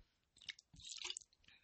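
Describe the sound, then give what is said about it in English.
Quiet mouth sounds of someone taking a sip of water: a soft slurp, a wet squishy gulp and a short swallow over under two seconds, with no talking. “Sorry, sip of water.”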